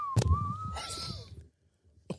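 A steady, sustained whistle holds one mid-high pitch for over a second, dipping slightly, over low rumbling noise and a sharp hiss, then fades into near silence before a short burst at the end.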